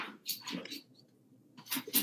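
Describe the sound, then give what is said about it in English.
A dog arrives in the room, with soft, breathy bursts like sniffing or panting, a quiet pause in between, then a few more snuffles. No one speaks. “I think that my dog's just got here.”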